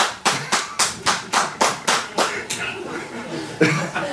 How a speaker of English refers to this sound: For the benefit of the tape, two UKIP supporters just clapped very loudly. I wouldn't want anyone to think there was a door flapping in the wind.